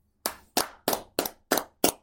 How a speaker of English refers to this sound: I mean, should we clap it up for Urban Meyer?